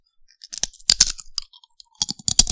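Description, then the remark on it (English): Loud crunching of a crisp Trader Joe's snap pea chip snack, with bursts of sharp, brittle cracks in two main clusters and small clicks in between. No one speaks. “That's some real crunch. This is like something hollow.”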